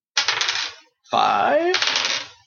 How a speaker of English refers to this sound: Okay. I have to roll some dice then.